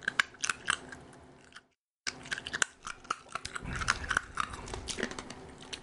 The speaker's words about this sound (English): I guess I should chew up my hard candies. Oh, there goes your tooth.